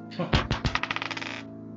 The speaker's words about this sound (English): I have this weather dice, so I'm going to go ahead and roll it right now.